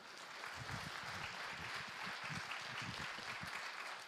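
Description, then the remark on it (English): A steady round of applause from a church audience for Dr. Cox after his sermon, dense clapping filling the whole stretch at an even level without a break, with no one speaking over it. “Cox a round of applause.”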